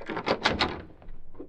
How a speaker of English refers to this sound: In a matter of minutes, Britt Reed, using a skeleton key, was opening the service door to Kane's apartment.